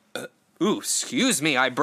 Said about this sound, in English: Excuse me, I burped. I'm sorry.